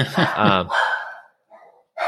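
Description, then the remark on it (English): A dog, Mulder, barks at something a couple of times in quick succession, loud, followed by a brief quieter yelp-like sound and the start of another noise at the end. “there's Mulder barking at something.”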